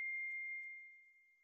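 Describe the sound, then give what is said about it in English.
A single soft electronic ding, a computer notification chime with a clean pitched tone that rings briefly and fades out smoothly, heard alone without any talking. “How do I turn this freaking thing off? Either close it down or notifications.”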